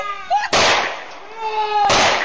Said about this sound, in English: Those last couple of shots you just heard was the one neighbor with the gun standing over the woman point blank.